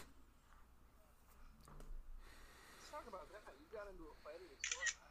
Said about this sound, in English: I heard a camera snap.